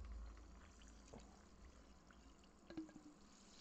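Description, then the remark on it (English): A steady, fizzy pour of beer into a glass over a couple of ice cubes, with a soft hiss throughout and a couple of brief clinks near the end, fairly quiet. “I put a couple cubes and pour it in there like that.”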